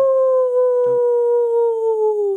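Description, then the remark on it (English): A wolf lets out one long, sustained howl that holds a steady, clear pitch and slowly sinks toward the end, loud with no voices around it. “Is that a wolf? Yeah. It was spooky.”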